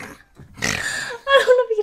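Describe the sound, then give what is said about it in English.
The speaker's dog snores in two rough, snorting bursts, a raspy drawn-out inhale followed by a shorter grunting snort, fairly loud. “I would like to think that my I'm getting distracted because my dog is like snoring.”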